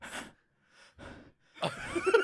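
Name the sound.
voice imitating heavy panting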